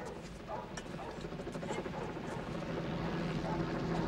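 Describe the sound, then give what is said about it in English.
A helicopter drones steadily overhead, a dense rumbling whir that swells slightly louder over a few seconds, with faint background activity beneath it. “The sound of helicopters throughout this whole movie, of course.”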